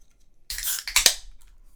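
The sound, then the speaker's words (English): A metallic can of Underwood Rosé Bubbles wine from Union Wine Company, made in Oregon, cracks open with a sharp pop of the tab, followed by a short bright hiss of escaping gas and a couple of faint clicks, with no talking. “Union Wine Company, made in Oregon. Let's crack it open.”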